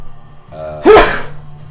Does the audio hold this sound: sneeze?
yes